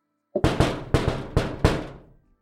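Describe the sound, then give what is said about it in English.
Five loud knocks on a steel door, each ringing out briefly before the next, in an uneven rhythm. No voices, just the resonant banging. “The two of you, Virian and Damien, hear the knock on the steel door.”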